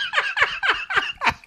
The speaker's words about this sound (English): But Lisa is trying to pick her moment to say hi to the cool kid. Yeah, oh, that's it. And the fucking seagull. And then she turns around.